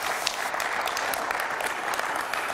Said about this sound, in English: Come on, somebody give me a clap offering on the feed.